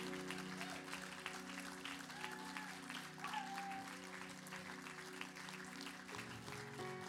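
A standing church audience applauds steadily in appreciation of pastors James and Darlene Chant, dense clapping filling the whole stretch at a constant loud level, with a sustained low organ or keyboard chord droning underneath and shifting pitch near the end.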